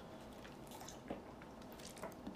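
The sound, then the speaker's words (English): Someone drinking water: a few soft, wet swallowing gulps at uneven intervals over a faint background hiss, with no talking. “Let me take some water.”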